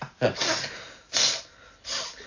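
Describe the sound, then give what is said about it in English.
Someone mimics sniffling, three short, sharp nasal inhalations spaced roughly a second apart, fairly loud. “But he's sniffling constantly.”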